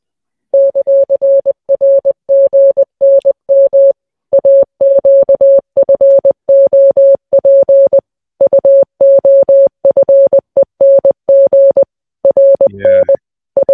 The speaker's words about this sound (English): Have to listen to the whole thing, but at this point, you know, you can probably get a good hankering from here. It's Morse code